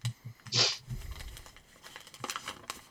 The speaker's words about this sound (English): You know, unfold this piece of paper.